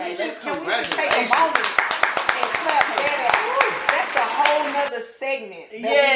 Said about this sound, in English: Can we just take a moment and clap for that?